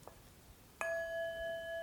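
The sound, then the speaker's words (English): A single meditation bell is struck after a brief quiet moment, its clear, steady tone ringing on with bright overtones and barely fading. No one speaks. “I think we should just reset, whether it's ring a bell or something, just a little, without getting too militaristic about it.”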